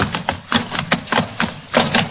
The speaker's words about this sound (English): The lantern smashed.